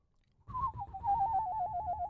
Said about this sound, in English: Have I ever shown you my whistling power?